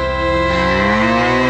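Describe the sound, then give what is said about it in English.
A single loud, drawn-out cow moo, clear, with a rich low droning tone that rises slightly in pitch, heard on its own with no talking. “Cows, too.”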